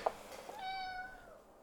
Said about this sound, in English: I heard your cat.